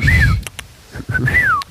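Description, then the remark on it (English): Someone does an imitation of the Fantastic Mr. Fox whistle: two short, falling whistled glides with a few sharp mouth clicks between them, and a low rumble underneath. “Mr. Fox whistle. It's like whistle and click.”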